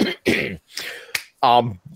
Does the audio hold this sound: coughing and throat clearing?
yes